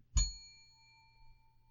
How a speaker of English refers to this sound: To help me control my rowdy panel of recidivists and reprobates, I will employ what I have called the inappropriate bell. An example of this would be...